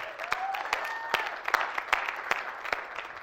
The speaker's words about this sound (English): Congratulations. Can we all give them one more hand of applause?